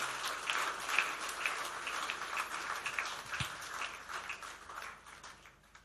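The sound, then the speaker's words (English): An audience applauds for the Lord Jesus in a steady, dense patter of many hands clapping, holding at an even level for several seconds before easing off slightly toward the end, with no talking over it. “Clap for the Lord Jesus.”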